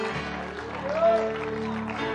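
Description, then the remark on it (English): An audience at a church service gives the Lord a hand clap of praise, clapping steadily for a couple of seconds, a dense, fairly loud wash of applause with voices and sustained tones underneath. “In Jesus' name, won't we give the Lord a hand clap of praise?”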